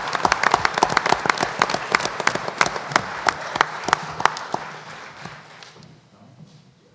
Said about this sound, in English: Let's have a round of applause for our First Team All-Conference folks.